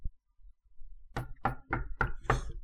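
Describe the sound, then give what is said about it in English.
Five firm knocks on a door come in a steady, fairly quick rhythm after a moment of near silence. They sound solid, with no voices. “Hold on a second, guys. I'll get the door.”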